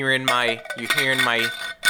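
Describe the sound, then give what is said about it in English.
A steel metal water bottle rolls across a surface, making a loud, ringing metallic hum with clinks, in two sustained stretches split by a brief pause, and no voices. “You're hearing my steel metal bottle rolling around.”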